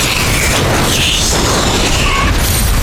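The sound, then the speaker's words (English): A video game car crashes into another car: a loud, dense roar of crunching, booming noise that stays harsh and steady for about three seconds, with no voices over it. “Crashed another fucking car.”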